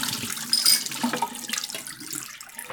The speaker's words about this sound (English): Okay, I'm going to pour out my pre-soak.